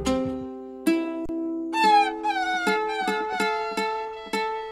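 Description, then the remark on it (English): A twangy country instrumental opening of a song about a dog: sustained chords under sliding, bending lead notes that wail almost like a cat, with steady strummed beats. Clear, no voices. “First, though, let's hear an animal song, a dog song.”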